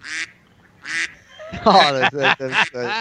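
A duck quack sound effect: a duck quacks twice in short, nasal bursts, then breaks into a louder, rapid run of quacks that fills the rest of the moment, loud, with no one talking.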